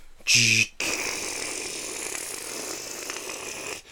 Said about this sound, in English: Who the fuck's opening the garage? We are.